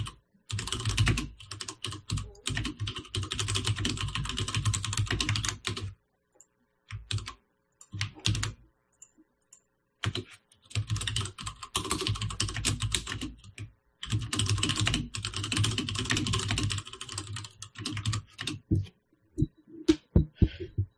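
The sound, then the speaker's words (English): Rapid typing on a blank keyboard with mechanical switches, clacky keystrokes coming in dense bursts with brief pauses between them, fairly loud, with no talking. “Beautiful mechanical switches on a blank keyboard.”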